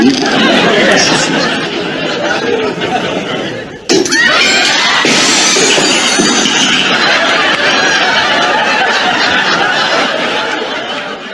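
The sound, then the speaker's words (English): Glass shatters with a sharp, bright crash partway through, its glittering fragments scattering over a constant background of busy crowd chatter and laughter. “That one was a touch of glass, yeah.”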